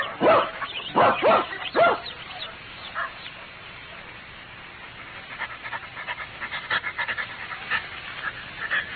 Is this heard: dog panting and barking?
yes